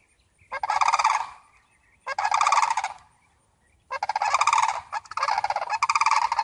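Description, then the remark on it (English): A flock of turkeys gobbles together in loud, rattling bursts, four dense calls in quick succession with short pauses between, clear with no talking. “And maybe, they have a very peculiar sound they make as a flock. It's really cool.”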